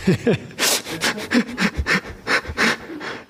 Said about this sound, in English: Someone's stuck. We heard somebody rattling a door for those online. I don't know what's going on.